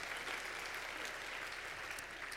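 A church audience breaks into steady applause, a dense, even patter of many hands clapping that holds at a constant level for a couple of seconds with no voices over it.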